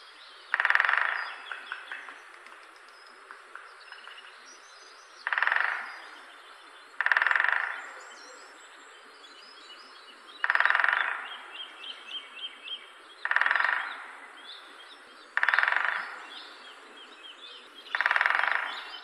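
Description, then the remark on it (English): A great spotted woodpecker drums on wood in seven short, rapid rolls, each about a second long and spaced a couple of seconds apart, with faint birdsong chirping in the background. “That little example was the great spotted woodpecker doing its thing.”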